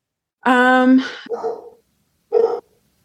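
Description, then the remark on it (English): A dog lets out a drawn-out, whining bark, then a couple of shorter rough barks after a brief pause. It sounds fairly loud, with no one talking. “There's the dog barking.”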